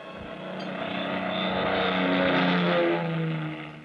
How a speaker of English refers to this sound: It was 11:30 p.m. when the big plane slowly glided down out of the clear starlit sky.